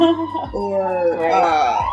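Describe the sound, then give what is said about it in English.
A police car siren wails steadily outside, its pitch sliding and rising over a couple of seconds, loud and sustained as the vehicle passes by. “Oh my God, that police car.”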